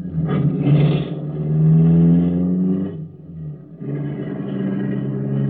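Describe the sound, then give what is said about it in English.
A car engine revs and rumbles as the vehicle pulls away, its droning pitch rising, briefly easing off, then picking up again steadily. No one speaks. “We'll drive once around the block now and hit the bank at 11:20 sharp.”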